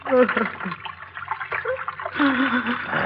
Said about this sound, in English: Here we are. The water runs quite strongly here, doesn't it? The largest sewer of them all.